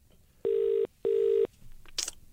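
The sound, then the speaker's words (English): Two steady electronic telephone dialing tones, each under half a second with a short gap between them, sound loud and clear as someone dials a phone number, followed by faint rustling and a brief sharp click. “We'll dial him up and see what's up.”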